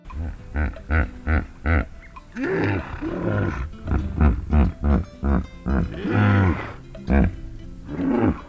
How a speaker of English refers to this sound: You're probably thinking we've lost the plot, but we're just listening in to the sounds that hippos make. Hippos make a variety of noises, but scientists didn't know what the function of these calls was.